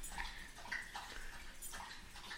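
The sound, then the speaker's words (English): A female dog that has just eaten laps water in quick, wet, rhythmic slurps, loud and fairly steady over a low background hum, with no voices. “Dude, our dog is drinking water.”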